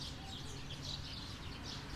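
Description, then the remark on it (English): A flock of roosting birds chirps and twitters continuously outside a building in Tokyo as it is almost dark, a soft, dense chorus layered over a low, steady outdoor rumble, with no one speaking. “The birds have come to roost, you can probably hear them.”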